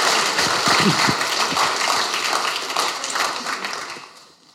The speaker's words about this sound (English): So Busby, where's Busby? Come on up here. Give Busby a big hand. Big round of applause.